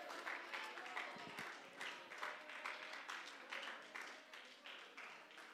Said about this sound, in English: Oh, let's lift our hands to the Lord. Let's clap our hands. Let's give God some praise right now.